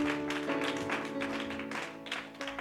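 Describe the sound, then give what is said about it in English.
An audience claps in praise of God in a steady, dense patter over sustained keyboard chords, the crackle of many hands filling the whole stretch at moderate loudness with no voices. “That's worth clapping to.”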